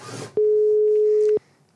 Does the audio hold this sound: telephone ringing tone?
yes